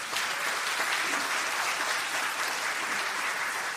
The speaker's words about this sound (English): I'm glad you applauded for that, because I was thinking, if you don't applaud after that offertory, there's something wrong with you.